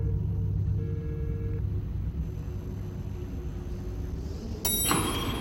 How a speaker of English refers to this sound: Elevator door opens. She's in the elevator.